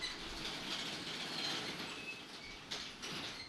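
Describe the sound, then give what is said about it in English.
A garage door rolls down with a steady, continuous grinding rattle, thin metallic squeaks riding on top and a brief clunk near the end. No one speaks. “Don't close the garage door yet. I'm still recording. All right, go ahead and let it down.”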